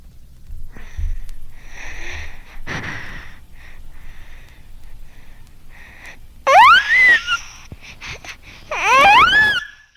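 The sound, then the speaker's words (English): An infant, hyperventilating, takes several deep, breathy sighing and sniffling breaths, then breaks into two loud, high-pitched wailing cries, each rising and falling in pitch, with quiet breathing between them. From a record of baby cries for diagnosis, A Child's Cry, A Clue to Diagnosis. “Compensation occurs through hyperventilation and the infant presents with deep sighing respiration. There is often an associated high-pitched cry.”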